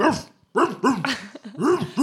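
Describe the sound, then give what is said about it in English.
A person imitates a dog barking at wolves, letting out a quick series of about five loud barking yelps in an uneven rhythm, with no other talking. “Bark at those wolves. Bark.”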